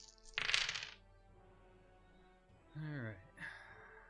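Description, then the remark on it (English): A brief clatter of dice rolled across a tabletop during a game, picked up by a microphone, a quick rattling burst lasting under a second, followed after a pause by a short voiced exclamation. “Oh, the sound of dice roll on the mic.”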